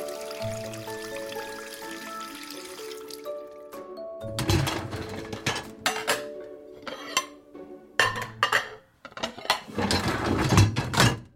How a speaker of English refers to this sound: A big, nutritious meal for Mum and Dad means a fully stacked dishwasher to clean.